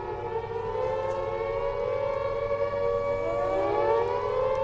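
A civil defence four minute warning siren, as heard in cities and towns, wails steadily, its pitch rising and falling in long sweeping tones with layered harmonics, loud and continuous throughout with no voices.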